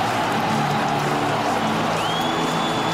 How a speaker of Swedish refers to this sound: Gör sitt 3:e mål den här säsongen och det är särklass viktigaste. Och Råsunda spricker upp i ett enormt gulsvart jubel.